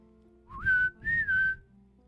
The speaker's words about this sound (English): he stops very quickly and kind of looks around and seems to be listening for something. And then there's a whistle.